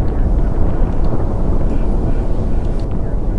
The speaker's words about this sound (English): In fact, one can show that all the galaxies must have been on top of each other about 15 billion years ago. This was a real Big Bang.